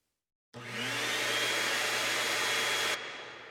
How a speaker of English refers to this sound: Maria is hoovering the stairs.